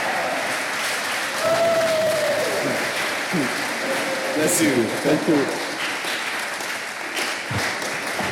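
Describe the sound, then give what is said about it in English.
Steady audience applause for a pastor fills the whole stretch, a dense wash of clapping with a few cheers, while a man speaks briefly over it. “Oh, wow, give it up”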